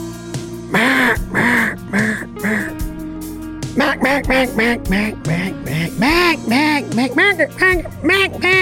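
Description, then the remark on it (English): A duck call blown in a rapid series of nasal, raspy quacks, starting with four spaced honks then speeding into a busy, chattering run, loud. “Does that sound like ducks at all?”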